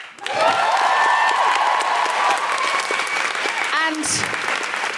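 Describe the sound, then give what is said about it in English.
A crowd breaks into loud, sustained applause that fills the whole stretch, with a few rising whoops and whistle-like cheers cutting through the dense clapping. “Could we please have a big round of applause for Lara and Samuel?”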